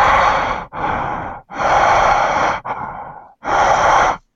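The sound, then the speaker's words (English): Heavy, creepy breathing right up against a microphone: five loud, raspy breaths in and out, each lasting about a second with short pauses between, and no talking. “all you hear is breathing and creepy music and circus noises”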